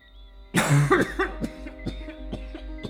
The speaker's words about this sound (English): He slid the balcony door open and absentmindedly lit a half-smoked spliff, inhaling deeply and coughing.